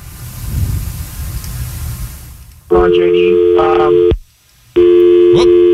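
Muffled, crackly phone-line noise gives way to a loud, steady electronic tone from a dropped call, sounding in two long beeps separated by a brief silence.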